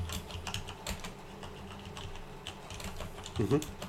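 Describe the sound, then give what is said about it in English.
Steady clatter of keys on a computer keyboard, a run of quick irregular taps, with a faint murmur of a voice in the background. “waiting on the typing. Oh, God. It was actually coming through quite loud.”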